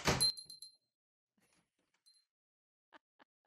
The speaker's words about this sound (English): And, oh, no. Stop opening the door. Damn it.